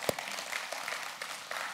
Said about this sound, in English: Isn't that great? That deserves some applause right there.